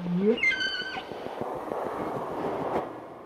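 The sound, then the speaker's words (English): Humpback whale song underwater: a low moan sweeps upward into a bright, harmonic-rich wail that slides down in pitch, then fades into a steady hiss and crackle for the rest. “for all humpback whale populations, the song changes every year.”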